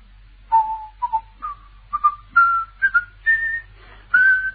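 Someone whistles the Sky Boat Song alone: a run of clear, separate notes in short phrases, gradually climbing in pitch, over a faint low background hum.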